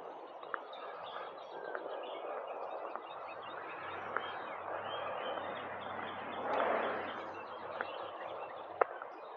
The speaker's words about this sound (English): Listen to those birds.